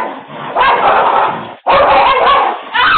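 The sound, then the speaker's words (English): A pit bull and a small dog fight in a neighborhood, caught on a doorbell camera: a loud, frantic tangle of barking, snarling and yelping that runs almost continuously, breaking off for a split second before erupting again. “The dog seems friendly enough at first, even if he is a pit bull. But then her little dog Max comes out and all hell breaks loose.”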